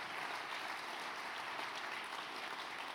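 A crowd claps steadily and densely for the whole moment, many hands blending into a continuous, fairly loud wash of applause with no voices on top.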